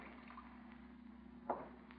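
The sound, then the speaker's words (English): A water faucet runs while someone washes their hands, a steady, low hiss of flowing water with a brief splashy burst partway through. The sound is faint and continuous, and no one speaks. “What's the water faucet running for?”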